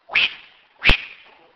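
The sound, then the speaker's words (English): Two quick swishing whooshes, like a blade swinging one way and then the other in a battle, made by a voice imitating the sound; the second is sharper and louder, each trailing off into a brief hiss. “it swings one way and swings the other. This is the most boring battle in the face of history.”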